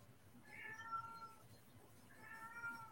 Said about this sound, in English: Oh my God, I hope this cat shut the fuck up.